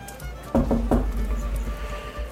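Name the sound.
knocking on a door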